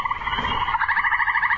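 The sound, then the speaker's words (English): A fast, steady run of chirpy Amazon frog croaks plays as a phone ringtone, the pulses repeating evenly and clearly, fairly loud with no voices over it. “It's an Amazon frog.”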